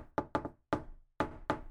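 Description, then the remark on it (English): A parents' special, deliberate rhythmic knock on a wooden door, sharp: a quick cluster of three raps, a single rap, a short pause, then two more spaced raps, with no voices. “My parents even had a special knock that went a little something like this.”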